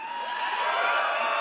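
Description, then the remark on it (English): A large crowd in the Microsoft auditorium in LA screams and cheers for Xbox in one loud, unbroken roar, a dense wash of high-pitched voices holding steady throughout with no single voice or words standing out. “People screaming, Xbox I love you.”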